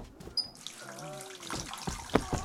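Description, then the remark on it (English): Freezing cold water, with no hot water, runs steadily from a tap, a soft continuous hiss and splash with a few sharper clatters near the end and a brief murmuring voice in the middle. “Freezing. Yeah, no hot water.”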